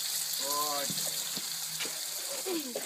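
A steady, close hiss of water spraying from a hose, with a few soft thuds and brief tonal, voice-like sounds rising above the continuous rush.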